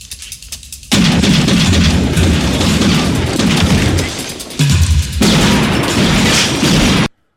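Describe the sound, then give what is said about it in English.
A film shootout in which characters, including Ice Cube's, fire back and forth at each other: a sustained barrage of loud gunfire, dense overlapping shots and booming blasts rolling on for several seconds with a brief dip in the middle, then cutting off abruptly. “They're shooting back and forth at each other.”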